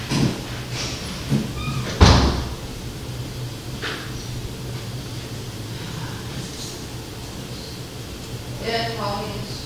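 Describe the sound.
A door shuts with a single sharp, fairly loud thud, preceded by faint shuffling and handling noises, then a quiet room with a soft voice near the end.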